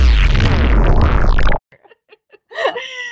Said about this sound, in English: Okay, so that kind of sounded like a fart, and that's why I added it. It does. I thought it was really funny. We're kind of messing around with the transition noises right now.